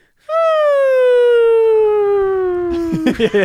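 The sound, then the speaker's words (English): A person tries to whistle the cartoon falling sound of an elephant falling, one long, loud tone that glides slowly downward in pitch for nearly three seconds, then breaks into a few short choppy bursts of voice. “I felt like Max Elephant would have worked better if it didn't literally make the cartoon noise as it was falling, where it went. I can't whistle good, so it sucks, but.”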